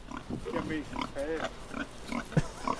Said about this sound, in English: What's that on? It's called a pig. You're on a farm.